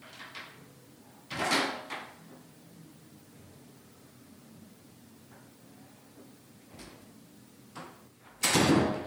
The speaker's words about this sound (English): So we're going to get to that one here in just a minute. This one's called Doors Slamming, so I don't know if maybe this is it. We'll find out.